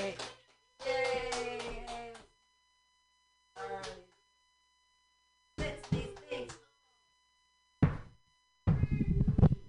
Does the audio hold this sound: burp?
no